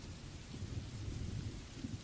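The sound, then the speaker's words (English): Low, continuous thunder rumbles beneath a steady hiss of rain from an approaching storm, with no voices. The deep rolling holds an even loudness for the whole two seconds. “It feels like a storm is on its way, no?”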